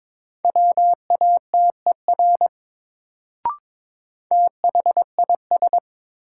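Morse code at 22 words per minute, a new-word drill of sentences built from the top 100 words: a steady mid-pitched tone keyed into quick dots and dashes, in two bursts separated by a short pause with a single soft click between them.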